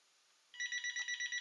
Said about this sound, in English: I've got a phone call. No, I'm just kidding. I ain't going to answer that.